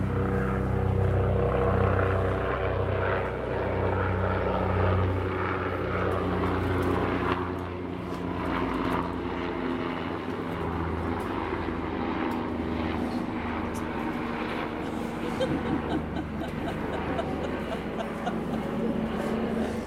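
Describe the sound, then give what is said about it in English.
A few helicopters flying overhead, heard while sitting by a tree in quiet nature, a loud, continuous engine drone with a steady low hum that fills the whole stretch, shifting slightly in pitch as it passes, with no voices. “And then you're sitting by the tree and there's just nothing to do, quiet, except a few helicopters playing.”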